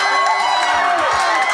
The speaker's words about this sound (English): This is at the very end. You can turn the sound up a little bit. Let them hear their pastor screaming and yelling.